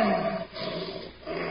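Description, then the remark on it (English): A caged big cat named Sultan lets out a deep, rumbling roar that dips briefly in the middle and then surges again, loud and rough-textured, with no voices over it. “you hear that, babe? That's Sultan telling you that by noon tomorrow you'll be a widow.”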